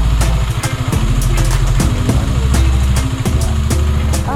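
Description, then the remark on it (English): A motorcycle engine runs loud, its low throbbing hum steady throughout, with repeated sharp bursts as if the throttle is blipped. No one speaks. “She wants you to take the motorcycle through that.”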